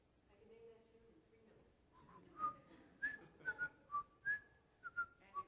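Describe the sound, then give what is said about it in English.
A person with a dry mouth whistles a short tune, a series of clear, separate notes rising and falling, preceded by a brief low murmured voice at the start. “So if I would say that my mouth is kind of dry, so I can't whistle very well, but sorry.”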